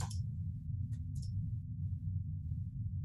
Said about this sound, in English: Yeah, I'm going to spend, what is it, 3 of it to get 2 extra dice? Correct, yep. Rolling 4 dice total.